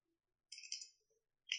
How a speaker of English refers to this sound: Can you make a percentage dice roll?